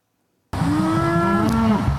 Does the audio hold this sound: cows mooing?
yes